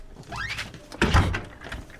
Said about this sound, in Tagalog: Ay, naku, salamat. Binuksan mo na rin yung pinto.